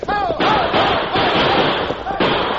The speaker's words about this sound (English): Hear the cattle spilling around, heading back, man. They're starting down the trail by the creek. Some of them will be lost, son.